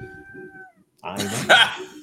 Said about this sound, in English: Cat had an opinion about that.